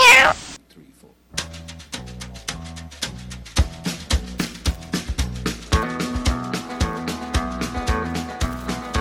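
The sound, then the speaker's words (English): A cat gives one short, loud meow at the very start; after a brief pause, upbeat music with a steady beat begins and carries on to the end. “No, kitty, this is my pet pet. No, kitty, you bad kid.”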